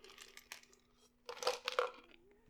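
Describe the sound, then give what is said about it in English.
Someone crunches ice cubes in their mouth: a run of irregular, crackly bites that grow louder and denser partway through, over a faint steady low hum, with no talking. “Dude, I have ice cubes in my mouth, so if anyone just hears, like, a, I'm sorry.”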